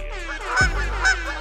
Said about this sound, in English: Uh-oh, you know what that sound means. It is now goose o'clock, so fellas, you can feel free to honk off in the corner for the next hour.